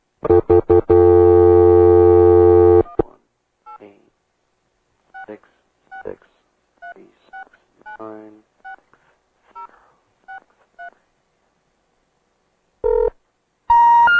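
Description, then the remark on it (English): A steady phone tone plays for a few seconds, then a string of about ten short, evenly spaced keypad dialing beeps as a Spike TV TNA conference call is dialed, and after a pause, a couple of brief electronic tones. “Now, the phone may go dead for a second, but it's just because I'm trying to conference them into us.”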